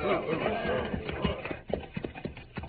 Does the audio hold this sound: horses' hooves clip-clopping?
yes